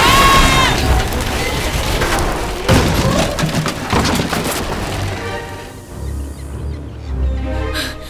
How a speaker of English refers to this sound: It's not an old-timey ship that almost ran us over. Actually, it is. And it's definitely haunted.